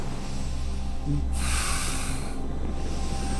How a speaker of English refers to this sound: Breathe into it. Really breathe into it. You want to hear the air flowing through your nostrils. Keep on breathing. Make it nice and hot.